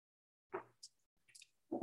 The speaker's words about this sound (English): I'm gonna take a sip.